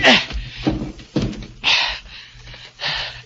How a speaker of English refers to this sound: So I piled furniture against the door.